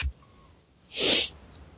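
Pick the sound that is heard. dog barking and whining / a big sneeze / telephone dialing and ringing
a big sneeze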